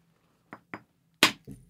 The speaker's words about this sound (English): All right. So we're getting that's a nice sharp edge. An interesting thing about this, if you're trying to visualize this at home, is when he lays the rock down and hits it, the piece he's blowing off isn't on top.